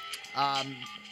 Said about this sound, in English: if you happen to notice your phone ringing or whatever, it's probably Hutch calling in to mention a few things